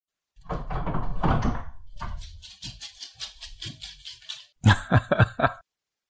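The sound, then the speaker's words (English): A door being opened: a rough scraping rush, then a quick series of rattling clicks and a few sharper knocks at the end, with no one speaking. “That is, one second, I gotta open the door now.”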